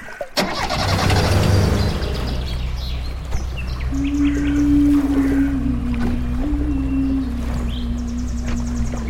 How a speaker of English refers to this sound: Finally, humming a tune of my own, I started the boat and made my way back to the marina.